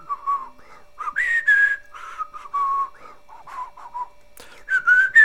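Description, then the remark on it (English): A person whistles a short, wavering theme tune, the notes sliding between pitches in uneven phrases with brief breathy gaps; no talking. “And then the closing is kind of like, it's not a whistled theme because I believe it's a synthesizer, but it's almost a whistled theme.”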